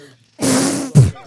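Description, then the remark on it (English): A loud, buzzy raspberry blown with the lips against skin, a sustained flapping burst of about half a second followed by a short second puff, with faint voices around it. “It's kind of making a sort of a farting noise on your skin. That's another word for it, too, isn't it? Raspberry.”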